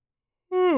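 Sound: big yawn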